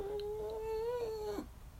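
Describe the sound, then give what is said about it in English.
A person imitates a dog's whine with a single sustained, nasal, humming tone of steady mid pitch. It rises slightly near the end and cuts off after about a second and a half, with no talking. “Oh, I guess that was a whine.”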